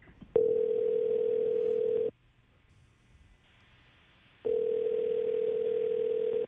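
A telephone ringback tone purrs twice as Mix 94.7 radio hosts call a listener, each steady electronic burst lasting about two seconds with a quiet gap between, clear and fairly loud with no one talking.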